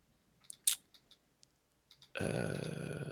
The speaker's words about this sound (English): Let's find out. You ready for some loud-ass keyboard noise? Yeah, give it to me.